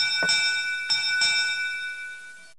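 A bell rings out with three quick strikes, its bright metallic tones sustaining and shimmering between hits before cutting off, with no voices.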